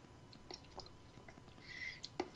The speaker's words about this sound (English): Oh, you're gonna go. You're drinking it now? Oh my God! You couldn't wait, could you?